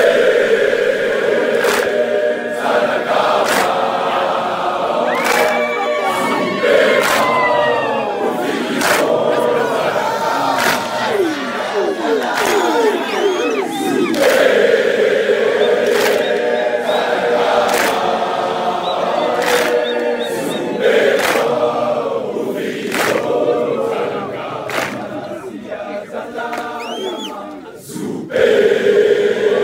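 A large crowd of students chants and shouts a loud, rhythmic war cry in unison, with sharp sustained yells and sliding vocal calls punctuated by percussive accents throughout.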